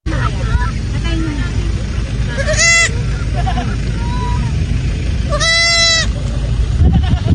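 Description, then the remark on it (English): A baby goat bleats twice, high and quavering, each cry lasting about half a second, as it is reunited with its mother, over a steady low rumble of background noise and faint indistinct chatter. “This is a goat, a baby goat being reunited with its goat mom.”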